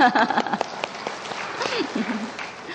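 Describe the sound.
An audience claps steadily for a few seconds, a dense wash of hand claps with some voices speaking and calling out over it, the applause holding fairly even throughout.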